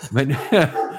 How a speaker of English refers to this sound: Boy, those dogs are going crazy.